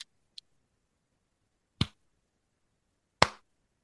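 A slow clap: two faint clicks, then two loud, sharp hand claps spaced well apart with a deliberate, unhurried rhythm. No voices are heard.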